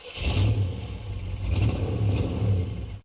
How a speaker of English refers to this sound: It was a targeted homing weapon with none of those limitations of running out of torpedoes or anything. You could fire it as many times as you wanted. When you fired it, it made this like huge internal combustion engine sound.